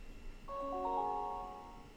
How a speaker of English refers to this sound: Star Tours chime. It's like an incomplete chime there.